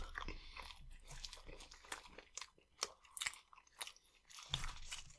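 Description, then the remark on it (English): Crunchy chewing of a doner kebab, with repeated crisp bites and wet mastication in an irregular rhythm, loud with no talking. “Extra crunch is all from me tonight.”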